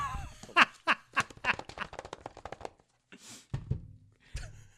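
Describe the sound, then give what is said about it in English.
A voice imitates two-finger typing with an irregular run of sharp mouth clicks and breathy taps, followed by a brief hiss and a few final clicks. “He is typing.”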